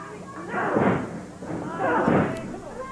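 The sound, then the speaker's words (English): Two heavy, muffled thuds about a second apart, a wrestler stomping and punching his opponent in the ring in the final minute of a match, each with a broad rumbling impact over a steady background murmur. “Ferris now with some stomps and some punches.”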